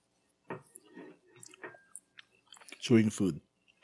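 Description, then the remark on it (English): Wet chewing with soft smacking and clicking mouth noises, someone eating dumplings; a short burst of voice briefly rises over it near the end. “By the way, listeners, we're eating right now.”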